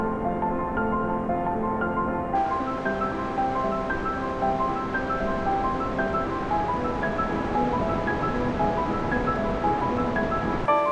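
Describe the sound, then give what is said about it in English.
Water waves wash steadily and continuously, a full, rushing surf sound that holds an even loudness throughout, with faint sustained tones running underneath and no voices. “Water is hypnotic. Water is mesmerizing. It can put you into a trance-like state.”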